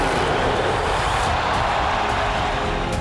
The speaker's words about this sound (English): And then by the last time he says, well, go and get 80 then. And an 81-point game. Listen to this crowd for number 8, Kobe Bryant.